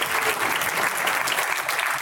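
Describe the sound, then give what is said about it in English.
A crowd at a political campaign speech applauds after the candidate mentions being endorsed by President Donald Trump, a dense wash of many hands clapping at an even, fairly loud level that holds for about two seconds without any voices. “You can wait for that applause.”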